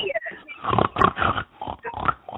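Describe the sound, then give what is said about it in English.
A person imitates a pig, making a run of nasal, grunting oinks in quick uneven bursts, fairly loud, with speech-like vocal texture throughout. “Oink, like a piggy.”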